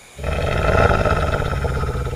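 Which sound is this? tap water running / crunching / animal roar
animal roar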